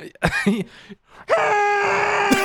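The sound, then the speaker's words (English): A voice imitates a muffled scream: a short strained vocal burst, then a long, steady, sustained cry held for about a second, loud, with no words spoken. “Like, or just a constantly muffled scream.”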